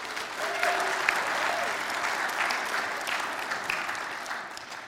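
Steady applause from a large audience fills the room, a dense wash of clapping that holds evenly for several seconds, with faint scattered voices and a brief tone beneath it.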